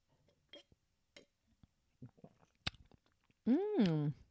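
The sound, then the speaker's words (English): A few soft, wet sips of a strong wine from a glass during a live taste test, with small mouth clicks and swallows spaced apart, followed by a drawn-out voiced hum of appreciation. “So let me take that sip.”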